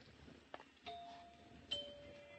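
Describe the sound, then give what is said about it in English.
A house doorbell chimes a two-note ding-dong, each tone ringing on and fading slowly, fairly soft against faint background noise and no talking. “Nice chimes.”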